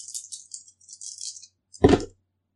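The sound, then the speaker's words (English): A crisp rattle of dice, including a plot die, being shaken for over a second, then a short clatter as they're thrown and tumble onto a hard surface, with no voices. “I'm going to use a plot dice for this.”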